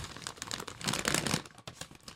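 Paper crinkles and rustles as a folded note, a kvittel, is opened, a continuous burst of crisp crackling that swells in the middle and trails off with a few last rustles.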